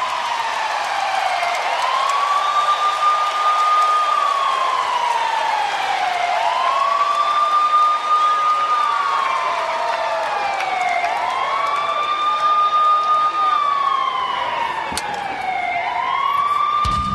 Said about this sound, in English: Monday Night Raw begins tonight at the Sprint Center in Kansas City, Missouri. You are looking live. Obviously, an ambulance is it rushing coming right into the arena? Yeah, rushing into the arena here.